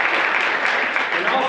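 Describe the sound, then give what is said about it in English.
A crowd applauds steadily, a dense wash of many hands clapping at an even, loud level with no pauses, running throughout. “But people gonna show up and show out and support you, so clap it up for that.”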